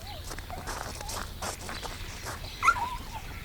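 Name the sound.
dog yelping in pain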